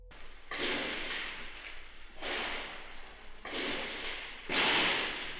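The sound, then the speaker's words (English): Archival reel recording of an attack on the PBS studios: four sharp gunshots ring out at uneven intervals in the station offices, each a loud crack followed by a long, echoing tail. No one speaks. “It's a few minutes long, and it's just the sound of gunfire in the station offices.”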